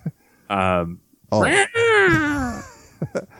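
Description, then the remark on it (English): A person imitates a cat with their voice, giving a short nasal mew followed by a longer, drawn-out wavering meow that slides downward, then a couple of faint breathy sounds. “Basically another cat noise. I don't think I've got anything else but cat noises in my repertoire.”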